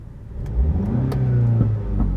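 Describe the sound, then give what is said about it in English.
A car engine revs up loudly, its drone rising and holding, with a few sharp exhaust pops crackling through at irregular intervals. “Hopefully, everyone can hear the audio, even though the car... Oh, the popping.”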